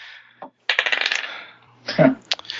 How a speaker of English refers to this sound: Let me roll a dice. Let me roll a die.